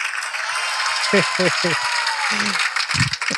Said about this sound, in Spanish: El público nos aplaude.